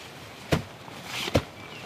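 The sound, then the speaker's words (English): Two heavy stomps on the ground as a final test of a newly installed seismic sensor, each a short, dull thud with a low, punchy impact, spaced under a second apart over a quiet background hiss. “The final steps involve setting up the livestock-proof fence, taping an explanation sign to the top of the box with the electronics in it, and that last stomp test to check that all is still good with the sensor.”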